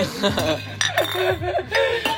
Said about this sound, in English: I gotta clink you. Clink. There, now it's complete.